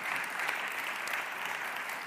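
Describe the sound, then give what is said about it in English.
Steady hand clapping from the band section during a church sermon fills the whole two seconds, a dense, even patter of claps at a moderate level, with no voices over it. “Somebody clapped back there, and it was from the band section.”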